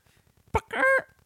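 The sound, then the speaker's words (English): A person's voice tries to mimic a dolphin call: a short, loud, strained squawk that comes out more like a honking bird, heard once, over faint rhythmic background thumps. “I tried to make a dolphin sound. It didn't work very well.”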